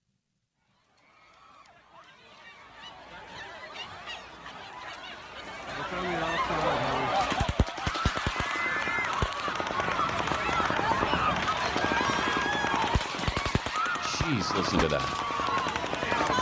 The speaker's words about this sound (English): There's also some cell phone footage of people running as the shots were fired. Here's what those people were going through last night.